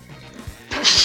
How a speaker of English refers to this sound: bless you